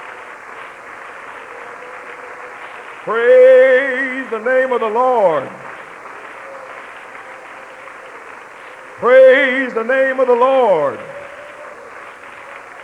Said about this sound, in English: Hallelujah. Praise God. Let's give the Lord a good hand clap tonight.